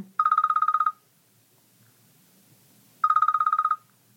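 An iPhone wake-up alarm tone called Hillside plays two bursts of rapid, trilling electronic beeps at a steady mid-high pitch, each under a second long, separated by a couple of seconds of near silence.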